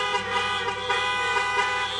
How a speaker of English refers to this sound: Isn't God good? You can honk if you want.